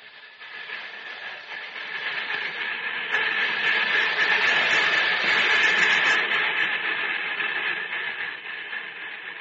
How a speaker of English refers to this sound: How would you like to take a ride in the cab of a real locomotive? Yep, handle the controls yourself.